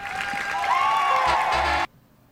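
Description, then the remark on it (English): A steady wash of audience applause for the host, mixed with cheering and a few whistle-like tones, holds loud for nearly two seconds, then is cut off abruptly, leaving near silence. “You finish that applause.”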